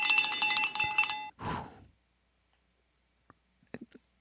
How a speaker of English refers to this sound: 5K challenge, week 30 complete. Let's ring the bell.